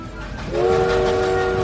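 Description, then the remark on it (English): A train horn blares steadily over the rumble of a moving train, starting partway in and holding as a loud, sustained tone until the end. “Explore the universe aboard the space train.”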